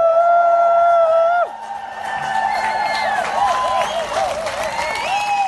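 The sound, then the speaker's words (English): An enormous crowd of at least 20,000 people applauds and cheers after a live song, with dense clapping under repeated shrill whistles: one long held whistle at the start, then many rising and falling whistled chirps over the steady roar. “The crowd, which my audio does not do justice to, was enormous.”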